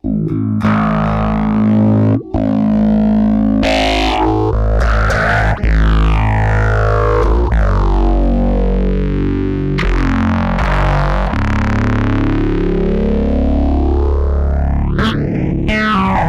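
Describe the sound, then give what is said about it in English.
Distorted bass guitar runs through a sweeping phaser filter pedal on its second phaser setting with added drive, its gritty notes swooping up and down in loud, continuous phrases with occasional abrupt pick attacks and no talking. “Let's add a little distortion. Yes. Add a little drive to it.”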